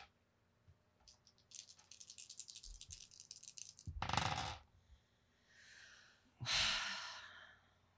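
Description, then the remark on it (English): Dice rolled for a stamina check in a tabletop game clatter and rattle in a quick, clicky burst for a couple of seconds, followed by two loud, breathy exhales, like heavy sighs. “Not rolling those goddamn dice.”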